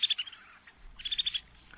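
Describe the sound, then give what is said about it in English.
Snow bunting (Plectrophenax nivalis) calls: two quick bursts of bright, high chirps and twittering notes, clear, with a short pause between them and no voices. “It's Plectrophanax Nivalis, today's Talkin' Bird's featured feathered friend, the snow bunting.”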